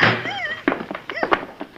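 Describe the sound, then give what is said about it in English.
A house door is shut with a solid thunk, followed by a couple of sharper knocks and bumps. Strained, gliding vocal sounds, like muffled whimpers, run underneath. “I'll shut this door.”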